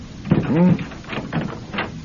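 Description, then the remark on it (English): A door swings open with a short, rising hinge creak, followed by a couple of soft knocks and rattles as it settles, fairly quiet. “Well, if you'd open the door, you could ask him yourself.”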